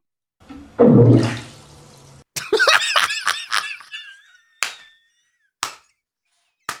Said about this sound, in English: What is it? It was an iguana. It's an iguana? It was an iguana in a bathtub.